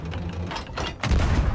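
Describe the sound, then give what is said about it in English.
A video game barrel explosion: sharp gunfire-like cracks give way to a loud, deep boom that rumbles for about half a second, with no talking. “Something exploded. Oh, I think I hit a barrel.”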